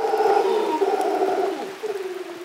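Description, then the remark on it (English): A troop of golden-mantled howler monkeys calling to each other from the treetops of a cloud forest in the rain, in Rincon de la Vieja National Park, northwest Costa Rica. Deep, droning roars overlap in a steady, moaning chorus that swells and dips, with no talking. The monkeys are 2 to 3 feet long, mostly black with a golden fringe. “In the treetops, a troop of golden-mantled howling monkeys calls to each other across the cloud forest.”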